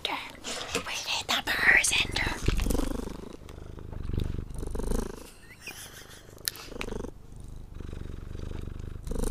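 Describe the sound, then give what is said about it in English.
A male cat purrs, a continuous low rumble with a breathy, rasping texture that swells and eases in rhythm with its breathing, plus a few faint bumps and rustles. “Believe me, his purrs get way more intense than what you're hearing.”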